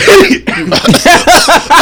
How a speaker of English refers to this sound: Bless you, brother.